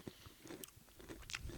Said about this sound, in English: I definitely love the snap on it. Is it really a snap? Well, we use snap for the podcast. I know it's a crunch. I know it's a crunch, but...